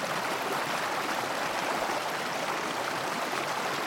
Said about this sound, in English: And don't you find the sound of running water to be so soothing?